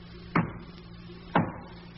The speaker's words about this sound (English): That knock. That's Ricky's.